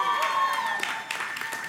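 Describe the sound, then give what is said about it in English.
A crowd at a C12 gathering breaks into applause and cheering to honor an administrative assistant, with steady clapping and raised voices blending into a loud, continuous wash of sound. “You should keep cheering.”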